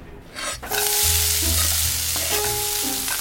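Bacon and mussels sizzle in a pan while beer-steamed mussels with bacon are being made: a loud, steady crackling hiss that swells in after a quieter first half-second, with a low hum and faint stirring beneath it. No one speaks.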